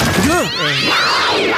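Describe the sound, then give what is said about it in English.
A clingy cat that doesn't like being excluded meows loudly, a rising-and-falling yowl followed by strained, wavering cries that stretch on for over a second. “even a clingy cat, just a cat who just doesn't like being excluded.”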